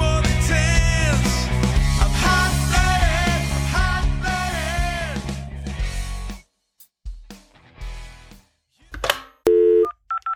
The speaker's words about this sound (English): Phone's ringing, dude.